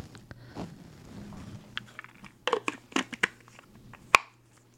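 Crunchy chewing of a probiotic tablet near the microphone: a soft, irregular series of wet crunches and clicks, growing louder with several sharp bites toward the end, over a faint steady low hum.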